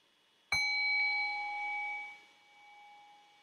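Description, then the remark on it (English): A meditation bell is struck once to begin a meditation of about three minutes, with a crisp attack, then its clear, layered tone rings on and slowly fades over several seconds amid quiet. “So I'll just ring the bell here, and we'll just have about 3 minutes of meditation.”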